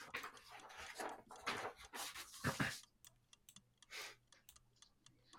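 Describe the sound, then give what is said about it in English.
A quiz countdown clock with 15 seconds on it ticks steadily in a regular, evenly spaced rhythm, faint clicks that stand out more clearly after a brief burst of louder noise at the start. “15 seconds on the clock.”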